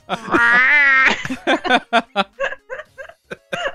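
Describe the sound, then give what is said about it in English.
A voice imitates a cartoon cat straining while defecating into a litter box: one long, tense, rising whine, then a run of about ten short, choppy grunts, fairly loud. “It's the cat Nyantaro shitting into a litter box”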